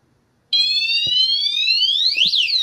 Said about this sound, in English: Just walk right past that white box and an alarm will go off.